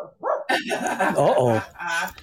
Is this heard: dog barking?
yes